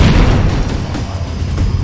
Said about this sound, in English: Fusion reactor number one destabilized. Explosives on the other three reactors. That should be enough to trigger a wildcat explosion.